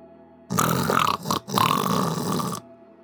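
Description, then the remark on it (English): A voice imitates loud snoring: two harsh, rasping snores, a long one, a brief pause, then another long one, with no talking. “Snoring. Loud snoring, rivaling the thunder overhead.”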